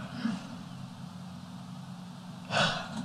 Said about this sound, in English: Ignore that yawn. That's a good one. That almost looked took like my life away. I think it looked like it really hit the spot.